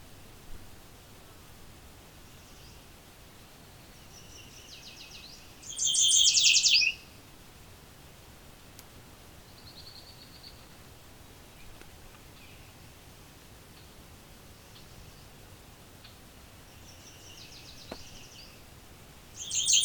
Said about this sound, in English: It seems to be gleaning from leaves some bugs to eat while singing.